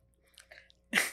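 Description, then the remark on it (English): A man chews the rest of his sausage: a few soft, moist smacking bites, then a sudden louder crunchy burst at the end, with no talking. “slowly chews the rest of his sausage, waiting to close.”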